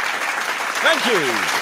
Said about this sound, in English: Guess I started the slow clap.